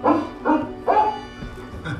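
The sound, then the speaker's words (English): A dog named Rover barks three times in quick, even succession, loud and mid-pitched, then gives a couple of softer, shorter yips or whines as it trails off. “Gives Rover and me more time to enjoy our evening stroll together.”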